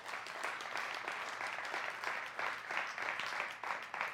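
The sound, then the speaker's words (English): An audience claps together in a dense, steady burst of applause that holds at an even, moderately loud level for several seconds, with a few slight swells and no voices standing out, applauding the launch of 850 church plants. “It deserves a hand clap for what God is doing in our planet.”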